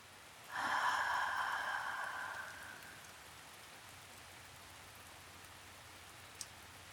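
Soft, steady rain hisses evenly throughout, fairly quiet and constant. Early on, a louder breathy exhale rises over it for a couple of seconds, and a tiny click sounds near the end.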